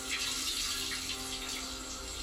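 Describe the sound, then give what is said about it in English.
Shower water running in a steady, continuous hiss, even in loudness throughout, with no voices over it, from a TV show's opening scene of the character Chase in a shower. “This is how we open a shower show with him in a shower?”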